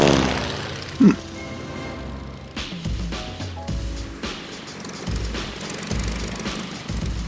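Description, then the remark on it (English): A steady, rough engine drone of a borrowed plane in flight hums throughout with a low rumbling buzz, like a small propeller plane, with a few brief sharp clatters and whooshes rising over the continuous roar. “I went up in that plane and flew the best flight of my life.”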